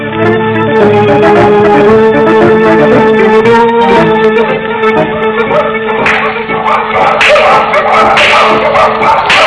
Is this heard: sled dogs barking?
yes